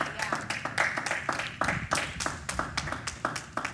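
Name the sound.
audience clapping in praise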